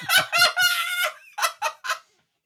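A chicken clucks loudly: a couple of sharp squawks, a longer drawn-out cackle, then three quick short clucks before falling silent.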